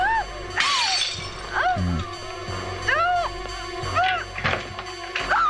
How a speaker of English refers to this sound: Jamie Lee is about to smash the glass